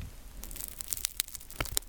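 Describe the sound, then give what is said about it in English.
The crackly Dutch Crunch (Tiger Bread) topping on a baked roll being lightly squeezed: a soft, steady rustle broken by a series of sharp, irregular crisp crackles and snaps, with no voices. “I'm just lightly squeezing the crackly topping on this roll.”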